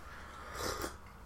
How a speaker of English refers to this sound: Sorry, just having a sip of my brew. The loudest sip of tea anyone's ever taken.